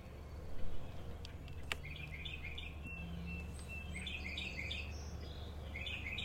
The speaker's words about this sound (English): All of a sudden, we start hearing birds. I mean, it was the loudest noise. I'm like, wow, that is so loud. Right outside our window.